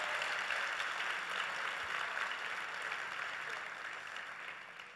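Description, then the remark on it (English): An audience applauds in a steady, dense wash of many hands clapping, loud at first and easing off slightly over five seconds, with no one speaking. “Clap for him. Clap for him.”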